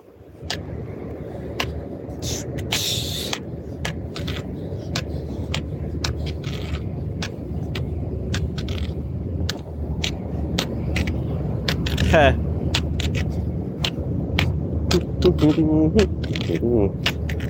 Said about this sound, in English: Should be getting close to the busy road here. This is very strange stereo. Yeah, I can hear the cars on the busy road. I don't know if you guys can yet.